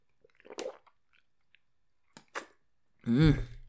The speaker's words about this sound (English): All right, sip some water.